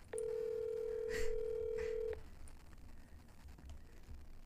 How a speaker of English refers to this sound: A lot of this audio commentary is just going to be dial tones, but whatever.